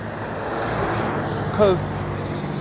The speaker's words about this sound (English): Now I'm sitting here out in traffic waiting to take the bus.